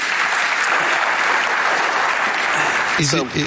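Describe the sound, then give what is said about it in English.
An audience applauds with steady, dense clapping for about three seconds, loud and even throughout, for a guest from LangChain in the front row, before a man's voice begins speaking as the clapping fades. “Give Harrison a round of applause, please.”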